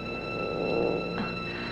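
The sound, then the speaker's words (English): A cat purrs steadily and continuously, a low, even rumble with no voices present, set against a faint constant hum. “But he's only a cat.”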